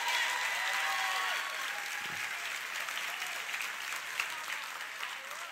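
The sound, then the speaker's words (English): A crowd claps steadily for several seconds for a young student with a 4.3 GPA, a dense wash of hand claps that stays fairly even in loudness, with a faint murmur of voices underneath. “Come on, give that 4.3 a big round of applause.”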